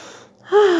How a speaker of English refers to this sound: Doesn't that feel good? How good does that feel? Tell me you do not feel relaxed. Breathing is essential. It's making sure you're taking deep breaths and not breathing from your chest.